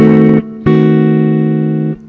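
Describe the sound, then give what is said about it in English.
A guitar strikes a D-sharp diminished 7 chord twice: a short, clipped stab, then a second strum that rings out steadily for over a second before stopping. No one speaks. “Let's try the D-sharp diminished 7 voiced in example 2A.”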